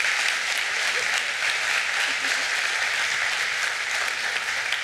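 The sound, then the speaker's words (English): A crowd applauds steadily, a dense wash of clapping hands that holds at an even, fairly loud level for the whole stretch, with no voices standing out. “Would you give her a hand?”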